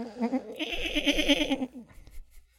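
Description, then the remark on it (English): A person imitates a goat, letting out a loud, wavering bleat that quivers rapidly for about a second and a half before trailing off, with no other talk. “…, do the goat noise.”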